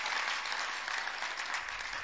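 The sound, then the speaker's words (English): An audience claps steadily, a dense wash of many hands sustained evenly for about two seconds, fairly loud and without any talking over it. “Father, those who are clapping, may they have a very powerful encounter.”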